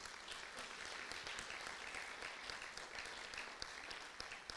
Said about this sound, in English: And I really want to give a big clap offering to the Lord today this morning. Please.